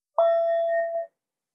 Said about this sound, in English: This one here, there are ways that I remind myself to go out in the street with my whistle or whatever I do as a meditation teacher. Instead of a whistle, I have my bell.